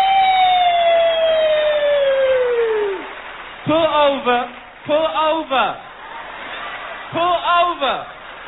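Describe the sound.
A person's voice mimics a police siren with a long falling tone, then several rising-and-falling "woo" wails in quick, loud bursts.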